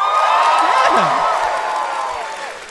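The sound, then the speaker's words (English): A large live crowd cheers and whoops loudly, with shrill voices rising and sliding above a dense, sustained roar that holds steady before easing off slightly at the end. “This feels like Oprah, like they're too willing to clap.”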